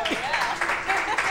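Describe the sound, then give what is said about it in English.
A burst of audience applause at a panel discussion, a dense wash of clapping hands that holds steady for about a second, with voices faintly mixed in underneath. “Applause, yeah.”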